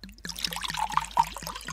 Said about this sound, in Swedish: då häller jag upp till dig och mig här då.